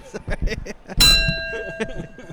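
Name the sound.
bell being rung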